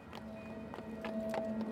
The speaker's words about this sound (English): Shadows creep across the streets of London as the sun dips below the rooftops. Horses' hooves clack off cobblestones.